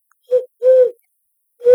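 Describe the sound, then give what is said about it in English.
A person imitates an owl with three fairly loud hooting calls: a short hoot, a longer drawn-out one, then a third after a pause, with no other voices. “I was doing bird calls.”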